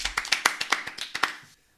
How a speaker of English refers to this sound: Round of applause for Neon Murkrow.